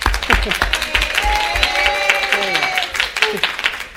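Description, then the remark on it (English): An audience breaks into a round of applause for a volunteer who has come up, dense steady clapping lasting several seconds, with cheering voices and whoops rising over it before the clapping thins out. “So everyone say big round of applause”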